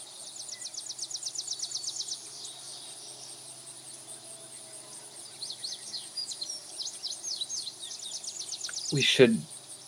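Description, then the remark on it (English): Birds chirp at dawn in quick repeated trills, a steady outdoor chorus that swells early and again later, with a faint background hum and a short louder sound near the end. “Birds are up, sun is up.”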